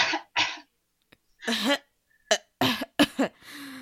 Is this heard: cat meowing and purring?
no